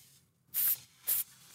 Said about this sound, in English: I don't know about you, but I would put a little microphone near the sizzle. It's sizzling.